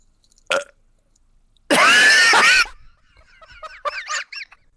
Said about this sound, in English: I burped.